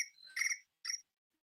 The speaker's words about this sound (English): It was crickets.